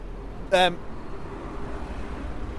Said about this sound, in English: Sorry, we're getting distracted by all the traffic.